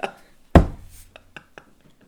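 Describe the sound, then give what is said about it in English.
Objects are slammed down on a table: one heavy, booming thud followed by a few lighter, sharper knocks at uneven intervals, with no talking. “Why do you keep slamming shit on the table?”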